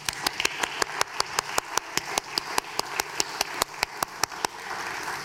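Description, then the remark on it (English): A church audience claps for the youth workers and children's workers in a steady, rapid unison beat, sharp slaps over a wash of crowd noise, before the rhythm stops and only a low murmur remains. “Why don't we give the youth workers and children's workers in our church a round of applause now?”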